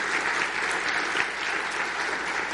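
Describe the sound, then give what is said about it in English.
A crowd applauds steadily, the dense patter of many hands clapping for a few seconds with no voices standing out. “Now, oh, please, go ahead, clap.”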